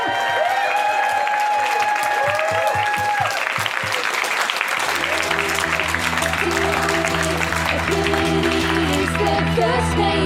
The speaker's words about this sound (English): Can we have a big cheer